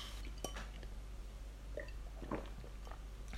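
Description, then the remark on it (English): Glasses of a sweet red drink that looks like cranberry juice clink together in a toast: a couple of light, bright taps, fairly quiet, followed by soft sipping and liquid sounds against a low steady hum. “Should we have a... Cheers. Cheers.”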